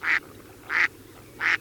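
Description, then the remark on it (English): A mallard duck quacks three times at an even, unhurried pace, each call short, nasal and fairly loud, with brief quiet gaps between them and no talking. “Mallards, for instance, crush and grind mollusks in their gizzards.”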